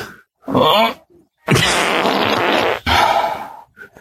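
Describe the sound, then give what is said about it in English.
A loud fart sound effect played by a smart speaker when asked for a difficult fart, in several strained bursts: a short blurt, then a long rumbling, sputtering stretch and a final squeezed push trailing off. No one speaks. “Alexa, give me a difficult fart. Here comes a difficult fart.”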